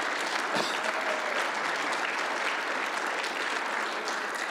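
An audience applauds, with many hands clapping in a dense, steady wash of sound. It holds at an even, fairly loud level for the whole stretch, and no one speaks over it.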